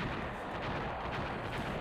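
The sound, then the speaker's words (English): A jetpack explodes into a sustained, crackling roar of blast noise that stays dense and fairly even throughout, with rumbling lows, no single sharp bang, and no voices. “The jetpack exploding?”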